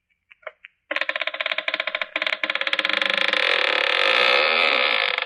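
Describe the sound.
A few light clicks, then a front door creaking open: a loud, rough, drawn-out rasp that begins in jerky, stuttering pulses and settles into a steady, grinding creak for several seconds.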